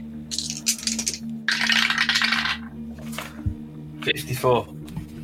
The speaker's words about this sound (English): Well, I'm dodging. Roll the dice.